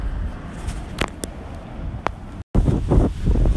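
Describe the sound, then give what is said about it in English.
Gusty wind buffets a microphone outdoors, producing loud, low rumbling blasts with brief crackly bursts, a sudden cut to silence, then heavier pounding gusts. “It's really windy out here, so that's where a lot of this audio is coming from.”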